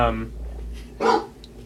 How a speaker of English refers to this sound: One is the frisky sounds of dog play.